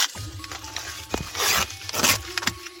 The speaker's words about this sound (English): So here's the sandwich. It's looking good. It's in a paper pouch. It's not like a wrapper or anything. It's just a... I'm going to open up the wrapping right now.